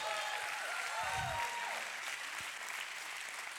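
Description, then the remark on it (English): An audience at Bethesda Church breaks into sustained applause during a sermon, a dense wash of clapping with scattered cheers and shouts rising over it, steady and fairly loud throughout. “Come on, put a clap on it, put a shout on it.”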